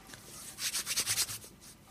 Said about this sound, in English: I can hear you rubbing your hands. I'm just getting preparation.